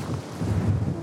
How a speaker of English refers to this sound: It's windy and cold.